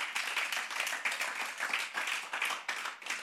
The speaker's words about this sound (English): Oh, give God a round of applause, somebody.